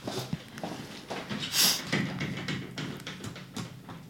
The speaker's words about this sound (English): I thought it was him knocking, man. I was like, how's he doing that?